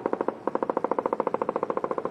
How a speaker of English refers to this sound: We can't see the gunfire, but we can hear it.